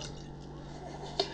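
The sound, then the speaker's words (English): A soft, steady splash of liquid being poured into a glass, ending in a brief bright clink near the end, close by and fairly quiet, with faint background voices. “Just pour that in my lap. Just what you drinking on? Pour in your Modelo.”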